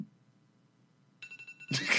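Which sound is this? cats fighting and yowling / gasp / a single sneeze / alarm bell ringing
alarm bell ringing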